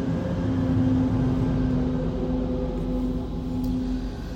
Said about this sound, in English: Now there's a big truck coming by, so just give me a sec here. I'm in my car and I'm just doing this all in my car.